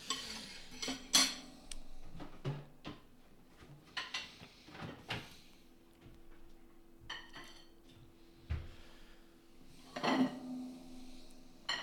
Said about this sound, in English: You may throw it out. I'll probably throw it out. Yeah. I'll sweep it onto this plate. Here, take any plate.